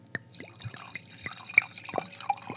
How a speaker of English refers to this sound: So obviously the term glue glue is French, and it basically is mimicking the sound that when you pour wine out of the bottle, it makes this sound.